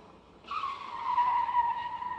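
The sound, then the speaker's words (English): A car being driven brakes suddenly and hard and its tires screech in a sustained, high skid that starts abruptly and holds loudly for nearly two seconds, with no talking over it. “So while they are driving, there's a sudden brake applied by Flash.”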